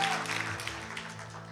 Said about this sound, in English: In Jesus' name, give a big amen and a hand clap to God, won't you?